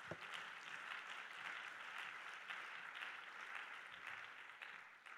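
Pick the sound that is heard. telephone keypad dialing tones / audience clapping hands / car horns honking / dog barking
audience clapping hands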